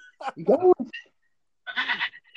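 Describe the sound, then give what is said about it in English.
A phone ringtone of a billy goat bleating: two wavering, nasal bleats separated by a short pause, fairly loud and with no talking over them. “Oh man, I forgot to silence my phone.”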